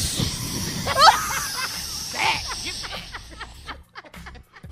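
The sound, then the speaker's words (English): A voice imitates an aerosol spray can spraying a spider, making a long breathy hiss, broken by a few short bursts and some faint snickering toward the end. “Why does that sound just like spraying my ears, though?”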